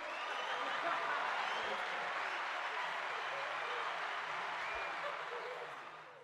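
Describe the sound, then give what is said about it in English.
A crowd cheering and applause sound effect: a dense, steady roar of clapping and voices that holds loud for several seconds, then tapers off at the end. “And the crowd loves it.”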